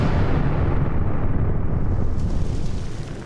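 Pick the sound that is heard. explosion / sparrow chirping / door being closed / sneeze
explosion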